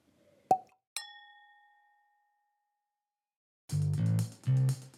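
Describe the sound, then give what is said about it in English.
A soft knock is followed by a single bright glass clink as a drinking glass is refilled, ringing out and fading over about a second, then a voice begins speaking after a short pause. “Well, I just refilled my glass.”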